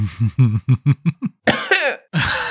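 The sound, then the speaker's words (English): A run of quick, short voiced hacks tapering off, then two harsher, breathy coughs, with no talking. “Very adorable cough.”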